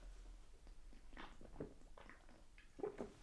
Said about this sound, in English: Is that better? No, it's still loud as fuck. It's still loud. Can you still hear it over the phone? Why don't you just sip like a normal human being? I don't know how to do that. Just take a fucking casual sip of beer